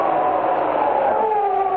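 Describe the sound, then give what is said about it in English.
A dog howls somewhere far down the road around midnight, one long drawn-out wavering tone that slides lower in pitch toward the end, steady in loudness over a muffled background hiss. “And then a dog began to howl somewhere far down the road.”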